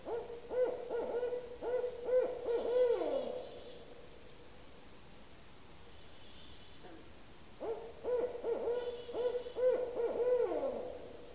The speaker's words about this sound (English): That, of course, is Strix Varia, the barred owl. I'll play it again. See if you can hear it saying, "Who cooks for you? Who cooks for you all?" Interestingly, that barred owl recording was made by scientists using an autonomous recording device.